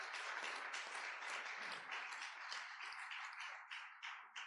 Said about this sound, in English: Hallelujah. Give the Lord a hand clap on that.